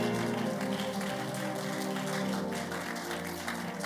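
An audience gives the Lord a clap offering during a sermon, clapping loudly and steadily, many hands blending into a dense, crackling wash that holds for the whole few seconds, with a sustained musical tone underneath.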